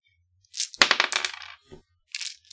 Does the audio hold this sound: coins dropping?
yes